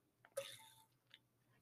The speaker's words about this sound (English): Let me take a sip.